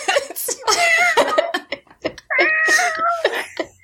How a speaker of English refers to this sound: Did you just hear that Penelope meow? Oh, Penelope wants to make spooky noises.